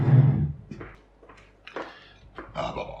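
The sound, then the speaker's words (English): A chair is moved: a heavy low bump at the start, then a series of scraping knocks and clunks as it is carried over and set down, with no one talking. “Do you want a chair? Yeah, bring me one.”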